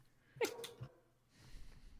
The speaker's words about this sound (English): I can hear my dog freaking out upstairs. I don't know what's going on. I can hear it too.